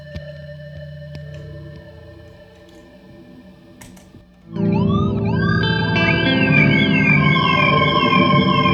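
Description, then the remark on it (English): A guitar played through an Enzo pedal with a Rainbow Machine and an Echo layered on top, drenched in pitch-warping modulation and echo effects, starting with sustained tones that swell at mid-clip into a dense, loud wash of swooping, siren-like pitch bends and repeating echoes, with no talking. “So you throw the Rainbow Machine and the Echo on top of that.”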